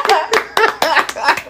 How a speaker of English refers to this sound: We're going to put some random applause in here.